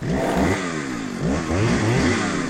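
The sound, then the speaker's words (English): A motorcycle engine sound effect revs repeatedly, its pitch sweeping up and down in throaty surges over a steady rumbling idle, loud with no voices. “They make it sound like a motorcycle.”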